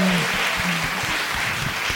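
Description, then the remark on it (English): An audience breaks into steady applause, a dense wash of many hands clapping at an even volume for about two seconds, with no one speaking over it. “Yes, let's have a round of applause for the one character who is playing themselves”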